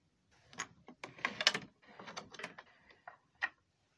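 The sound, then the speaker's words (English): A key scrapes and rattles into the front door lock of the Keene home as Professor Cole Beaudoin lets himself in, followed by a series of metallic clicks and jingles as it turns, ending with one sharp, separate click. No one speaks. “When Professor Cole Beaudoin walks in, lets himself into the Keene home with his key through the front door.”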